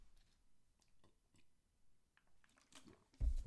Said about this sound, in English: Let me take a swig of my water.